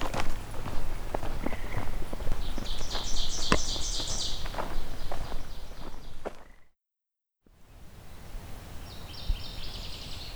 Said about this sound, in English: There we go, the northern water thrush. There are quite a few of them. There are quite a few of them in Beverly Swamp as a whole.